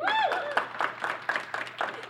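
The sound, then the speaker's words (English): Sparse, hesitant audience clapping to vote for the Beto sex tweet as a cursed tweet: a handful of sharp claps spaced irregularly about a quarter second apart, with a voice sounding briefly at the start. “You all look very uncomfortable clapping for this, and I understand why.”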